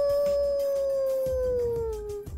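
A single long, loud wolf howl, holding a steady tone that slowly slides lower in pitch, with soft low rumbles underneath.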